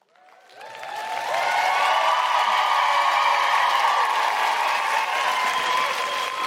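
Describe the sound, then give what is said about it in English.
An audience in Cardiff breaks into applause, clapping to register on a clapometer. The applause swells over the first second into loud, steady clapping, with some cheering mixed in, sustained right to the end without letting up. “So you clap when you're feeling it.”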